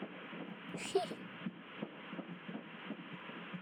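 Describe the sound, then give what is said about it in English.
A fast, steady fetal heartbeat on a prenatal ultrasound monitor, rapid whooshing pulses repeating under a constant hiss of static, fairly quiet and heard on its own without talking. “That was the first time I ever heard your heartbeat in again. My tummy.”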